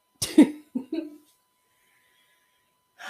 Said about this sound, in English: And I can't believe I talked this whole time and have not coughed. And now I'm trying to cough.